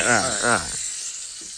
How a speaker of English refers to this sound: I do like the smell of bacon, but can you turn the stove down a little bit? The sizzling's really messing with me.